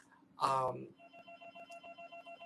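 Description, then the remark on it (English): A telephone rings with a rapid, steady electronic trill of evenly pulsed tones, moderately loud, right after a brief loud vocal noise. “Excuse me, ginger ale, and phone ringing.”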